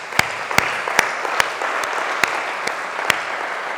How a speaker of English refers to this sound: Let's give a hand of applause for our Lord Jesus Christ, really.